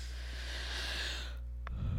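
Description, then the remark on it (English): A drawn-out yawn: a long breathy exhale that fades after about a second, followed by a small click, with a steady low hum underneath and no talking. “I just yawned and I'm like six shots deep already this morning.”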